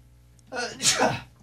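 A single sharp sneeze bursts out after a short quick inhale, loud and breathy with a hissing spray, then fades quickly into quiet.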